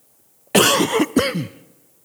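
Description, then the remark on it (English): A loud, close-up cough in two harsh bursts right against the microphone, with a brief gap between them, then quiet. No one speaks. “Sorry, I didn't mean to cough in the microphone.”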